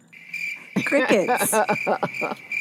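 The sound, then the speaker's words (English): A steady, continuous chirping of crickets plays as a sound effect throughout, while voices talk and laugh loudly over it from about a second in. “Crickets. I love it.”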